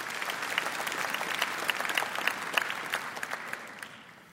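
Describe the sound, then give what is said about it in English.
A church audience at Moody applauds steadily, dense overlapping claps forming a bright, crackling wash that holds for several seconds before gradually thinning and fading out. “So why don't you give yourself a big round of applause?”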